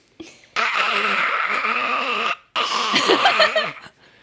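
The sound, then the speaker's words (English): A person's voice imitates a zombie-like monster growl: two long, loud, raspy moaning bursts separated by a brief pause, with no other sounds. “Ooh, like a zombie.”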